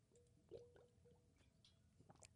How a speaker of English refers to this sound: You know, I'm going to take a sip of water so I don't further dehydrate myself after taking all that sodium in over at White Castle. Here's a drink break.